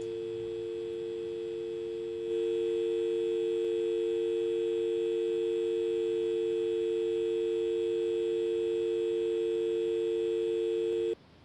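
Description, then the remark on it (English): A steady electronic telephone dial tone drones on without a break for about nine seconds after the other party hangs up, flat and unchanging, with no voices, then cuts off abruptly. “Do you have a dial tone?”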